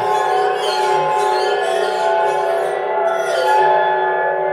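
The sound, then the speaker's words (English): Wine glass rims are rubbed, producing several sustained, overlapping ringing tones that hum steadily like chimes and swell slightly in loudness, with no talking. “I've got like a bunch of wine glasses and I'm going to town on them, you know, with the rims and you go do do do do do do.”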